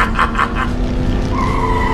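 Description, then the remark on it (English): The Batmobile roars and skids hard around a corner, tires squealing in a sustained high whine over the steady engine rumble, loud and continuous for about two seconds. “Just then, the Batmobile came speeding around the corner.”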